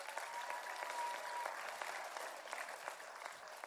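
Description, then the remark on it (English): An audience applauds steadily, clapping for Jesus after a prayer, dense overlapping claps filling the whole stretch at an even, moderate loudness, with no voices standing out. “You can clap for Jesus.”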